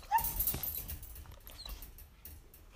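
A golden doodle dog named Daisy whimpers with a few brief, high, thin whines near the start, followed by soft shuffling and pattering noises. No one speaks.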